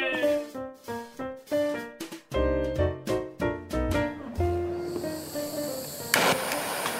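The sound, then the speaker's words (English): A string of rhythmic, humming tonal pulses gives way to the steady, rushing hiss of a blowtorch held on a piece of lead inside a small tin pot, melting the lead. It runs for the last couple of seconds, with a sharp click near the end. “is holding a blowtorch on a piece of lead inside a little tin looking pot.”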